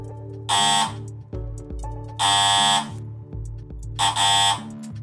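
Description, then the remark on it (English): A harsh electric door buzzer sounds three times in loud, evenly spaced bursts of about half a second each, over a low, steady rhythmic hum. “Not long after we'd taken a seat in the little sitting room that connected our two bedrooms, all of us silent and thoughtful, the door sounded.”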